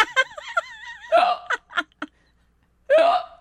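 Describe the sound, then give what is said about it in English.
A person vocally imitates the deep hiccups of a man sitting on a bench during a film shoot: a wavering voiced lead-in, a few short clipped bursts, then one loud, strong hiccup-like gulp after a pause. “One of those kind of deep hiccups.”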